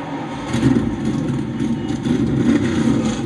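A dense roar of race car engines at the start of the Daytona 500 rumbles steadily and loudly, with several engines revving and surging over a continuous low growl, no voices heard.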